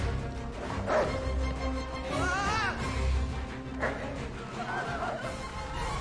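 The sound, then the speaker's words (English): Several dogs bark and yelp in scattered bursts, with one drawn-out, wavering yelp in the middle, heard over a steady low rumbling background. “Oh, the wolves or dogs or whatever.”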